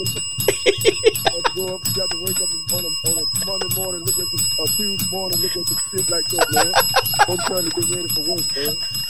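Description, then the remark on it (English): A cursing bell rings nonstop through the whole clip, a bright, steady ringing that runs over and covers a man's fast, animated cussing rant, bleeping out his curse words. “You got the cursing bell on? I sure do.”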